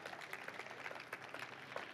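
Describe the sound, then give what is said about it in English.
An audience claps together as a clap offering to the Lord, a steady, dense burst of applause, many hands slapping at once with a fairly even loudness throughout, no voices standing out. “Give the Lord a clap offering.”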